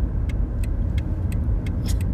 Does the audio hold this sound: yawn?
no